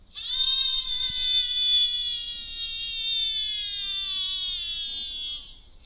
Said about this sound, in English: So it's playing the audio of the screams, and it's also recording the audio, and we're also recording other things like temperature, pressure.